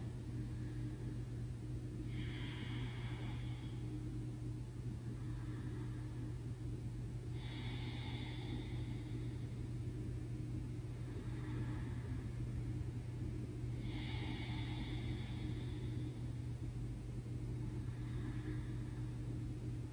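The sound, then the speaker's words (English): Slow, steady ujjayi breathing, a soft oceanic hiss drawn through a constricted throat with the mouth closed, repeating in long in-and-out cycles over a constant low rumbling hum. No one speaks. “It's also known as Darth Vader breath”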